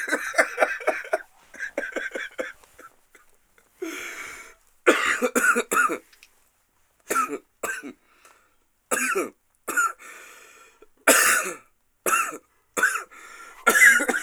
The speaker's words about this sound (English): Cough it out and fucking finish it up.